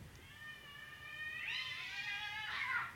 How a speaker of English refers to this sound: Man, those cats are going crazy. There's a couple of cats screaming outside the back. I thought it was my kids for a second. So did I. And then I realized that no kid can sound like that.